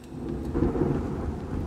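A deep, rolling rumble of thunder churns steadily beneath a constant hiss of falling rain, heavy and continuous throughout, with no voices.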